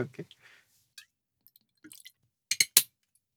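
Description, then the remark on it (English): Laphroaig 10 whiskey being poured into a glass, heard as a few quiet splashes and drips followed by two louder glassy clinks near the end, with faint murmuring at the start. “It's a sign of greatness when he pours more than he should be pouring in the glass, ladies and gentlemen.”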